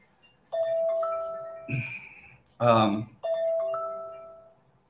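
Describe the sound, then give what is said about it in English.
A phone rings with an incoming call, which is then declined: two long electronic ring tones, steady and fairly loud, each holding a clear pitch, with a brief burst of voice between them. “And hang on one second here while I decline that call with my free will or my causal chain, as it may be.”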